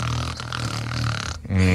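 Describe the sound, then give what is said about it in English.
A loud, rough snoring snort from someone asleep: a long rattling inhale with a low buzzing drone, a brief pause, then another heavy snore begins even louder. “You do have a loud snort.”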